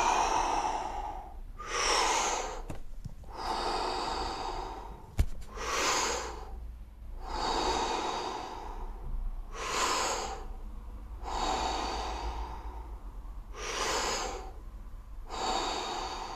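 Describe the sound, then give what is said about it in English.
Deep, rhythmic breathing in and out during a round of a breathing exercise, with steady forceful inhales and exhales repeating roughly every two seconds and no talking. “So when you're ready, we're going to go for another round. Breathe in and out.”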